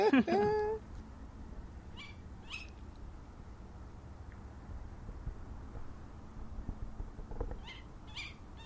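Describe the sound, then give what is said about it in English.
A tawny owl calling in the distance gives a single wavering call right at the start, then quiet outdoor summer evening ambience follows with faint scattered rustles and clicks. “So the sound that you can hear in the distance is a tawny owl.”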